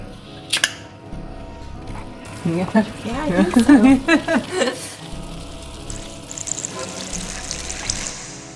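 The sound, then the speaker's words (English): Fermenting liquid fizzes with a steady, soft hiss of rising bubbles, preceded by a sharp click and briefly overlapped by a voice before the crackling fizz carries on alone. “Sometimes when they're really, really active, and these ones are just young, you'll have it like bubbles will come rushing up to the top and explode all out the top, and you get that lovely shh kind of sound.”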